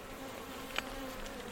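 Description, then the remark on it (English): A steady, droning hum of many honeybees buzzing around an open hive as its frames are inspected, the colony more protective because it is making queen cells, with a faint higher whine running through it and one brief click partway through. No one speaks. “Yeah, but they are buzzing around because when they make queen cells, you know, they're a bit more protective.”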